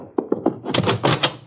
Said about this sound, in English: I heard a door close.